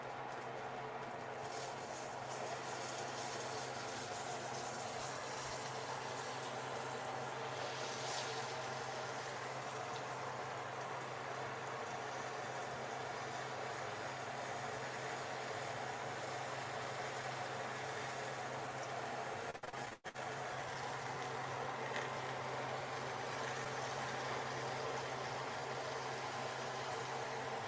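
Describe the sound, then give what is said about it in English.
Steady, even frying sizzle of a buttermilk-coated piece placed skin side down in hot oil in a pan: a dense crackling hiss holding at the same level throughout, with a low hum beneath it and a brief dip partway through. No one speaks. “And you can hear that start to sizzle.”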